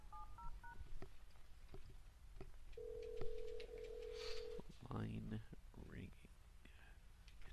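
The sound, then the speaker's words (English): A corded landline phone plays a few quick touch-tone dialing beeps, followed by a steady, unbroken dial tone lasting a couple of seconds, with whispery voices and rustling. “When's the last time you heard a dial tone? About 5 seconds ago.”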